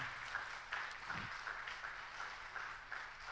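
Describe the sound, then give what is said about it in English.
A crowd applauds on Pastor Appreciation Day to show appreciation for the pastors, a steady dense wash of many hands clapping at once with a fairly even level throughout, no voices standing out above it. “Give them a big old hand clap if you appreciate them today.”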